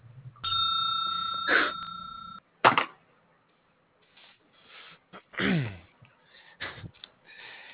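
A telephone rings once in a steady electronic tone for about two seconds, then cuts off, followed by scattered short breathy and throat-like noises with quiet gaps between them.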